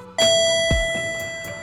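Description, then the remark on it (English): An elevator chime sounds once and rings on as a steady bright tone, while the doors open with a low mechanical thud and a few soft clunks beneath it. No one speaks. “Doors opening.”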